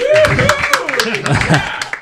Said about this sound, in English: so I've got about a dozen people in the audience right now, and I got an applause sign that I can light up, which I'm doing right now.